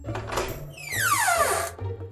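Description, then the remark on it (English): A door, turned by Cyrus, swings open with a long, high creak that slides steadily downward in pitch over about a second, preceded by a soft knock and a low background hum. “Cyrus turns the door. It opens.”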